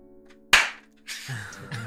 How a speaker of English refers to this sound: This guy had to get the clapping.